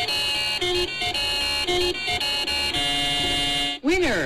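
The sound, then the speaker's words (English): A lottery ticket scanner app's alert tone as a ticket is scanned with a phone: a bright electronic jingle repeating a short chiming motif about once a second, then a held tone ending in a swooping pitch bend, loud. “What a tease when you hear this, like when you scan your phone.”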